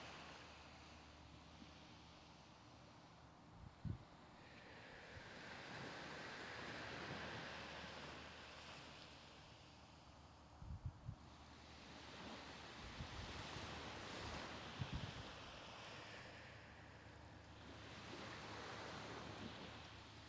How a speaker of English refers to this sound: Begin to focus on the waves. First, just notice them coming and going. What it sounds like with your eyes closed down. Both at the shoreline and further in the distance. The waves rise, and you can feel that in your body.